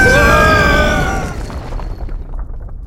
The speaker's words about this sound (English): Okay, now's the part where we's jump. Jump? To avoid the explosion.